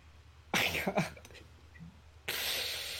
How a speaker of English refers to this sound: And I want you to focus on your throat, okay? I want you to contract your throat and slow down the rate of your breathing and make that noise.